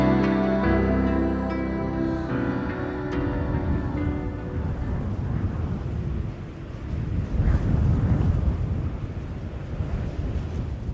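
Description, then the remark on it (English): Strong wind over the plains roars in a dense, low, gusting rumble that swells and ebbs throughout, with a sustained tonal drone layered over the opening seconds before fading away; no one speaks. “There are few sounds as interminably sad as the wind in the plains. A dense, omnipotent moaning howl that echoes deep in the bones of the earth.”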